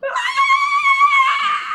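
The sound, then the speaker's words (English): A person acting in character lets out a sustained, high-pitched scream, loud, holding a steady shrill tone for nearly two seconds with no other sounds around it. “I scream bloody murder.”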